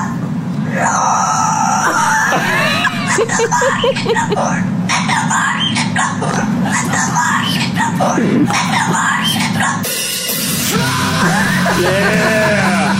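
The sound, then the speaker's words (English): A cockatoo screeches and growls continuously, harsh rasping squawks and guttural throaty growls alternating with piercing high cries, loud throughout, with occasional human voices mixed in. “I just bought a cockatoo from a guy on Craigslist, and it keeps on making these.”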